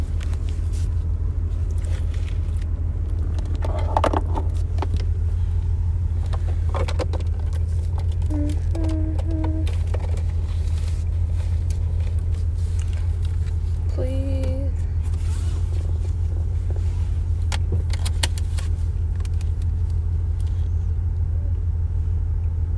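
Steady low engine rumble and road noise fill the cabin throughout, a constant drone from a moving car, with a few faint tonal beeps and brief rattles rising above it.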